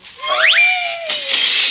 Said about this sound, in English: Meow. Meow. Put that cat outside and come here.